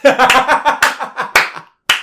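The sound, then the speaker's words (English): A short burst of light, scattered, polite hand clapping from a crowd after a song played on guitar, several people patting out irregular claps that fade into a brief silence before a single last clap. “The whole crowd just politely clapping.”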